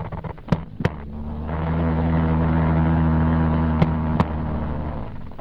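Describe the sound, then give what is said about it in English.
Jumping spider courtship vibrations on a nylon pantyhose surface: a low, droning buzz with steady harmonic hum that swells and holds, punctuated by a few sharp taps near the start and two more near the end. “The surface that you heard it vibrating was actually on a nylon surface, actually a pantyhose.”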